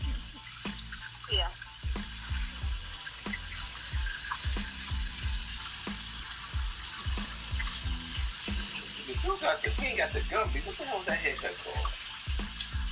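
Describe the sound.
A faucet runs steadily with a bright, hissing stream while dishes get scrubbed, with scattered clinks and scrapes throughout and muffled voices murmuring faintly underneath.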